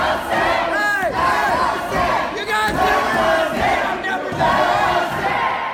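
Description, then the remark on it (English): A large crowd of protesters, some armed with guns and others carrying Trump signs and American flags, shouts and chants continuously at the Michigan state capitol building against Governor Gretchen Whitmer's COVID-19 public health measures: a dense roar of many voices with rising yells and whistles cutting through, sustained and loud throughout. “In Michigan, protesters were a familiar sight at the state capitol building”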